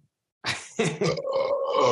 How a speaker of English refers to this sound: Oh, man. That was a hell of a burp. That's a long one.